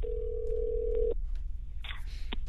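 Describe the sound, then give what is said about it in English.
A steady telephone tone holds for about a second, then gives way to brief dialing beeps and a bright ringing burst as a phone call is placed to Steve McKenna in Seattle, Washington, heard over a low background hum with no one speaking. “So I'm going to get Steve on the phone right now.”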